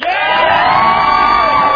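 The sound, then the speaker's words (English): A loud crowd cheers and shouts all at once, a sustained roar of many voices with high-pitched yells and whoops, continuous for the whole moment, as one side of the audience practices cheering for a team. “All of y'all on that side, you are cheering for this team right here.”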